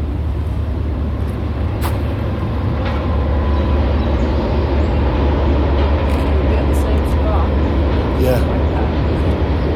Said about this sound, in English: Right. There's another big train.